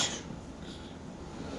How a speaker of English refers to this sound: Excuse me. So. I had to sneeze.